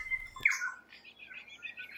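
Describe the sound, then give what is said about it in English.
Native forest birds on Kapiti Island, off Paraparaumu, call and sing, starting with a sharp squawk and a bright whistle, then a steady run of chirps and warbling notes with no voices. “There are hardly any people around. Instead, birds rule.”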